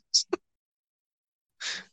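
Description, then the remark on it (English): Heavy breathing: a short sharp breath with a click, a pause of silence, then a longer, louder, airy exhale like a sigh. “Is that heavy breathing?”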